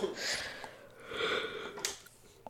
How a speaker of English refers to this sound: Excuse me, I was taking a sip of water.